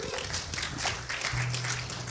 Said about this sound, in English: Okay, you can grab a seat. Thank you, band. Let's give the band a clap.